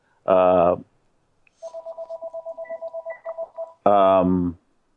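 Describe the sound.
A mobile phone rings with a quick, steady run of about a dozen clear electronic beeps lasting two seconds, bracketed by short bursts of voice before and after.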